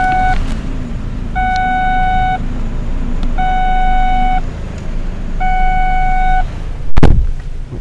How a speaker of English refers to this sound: Me opening the door so I could see how close I was to the curb, and car warning me, oh, you're driving with the door open. I know I'm driving with the door open.